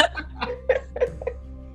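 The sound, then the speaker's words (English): A small, stifled sneeze amid a string of short, breathy vocal bursts, five or so quick catches of breath spaced irregularly over under two seconds, moderately loud, with no speech. “Was it a sneeze?”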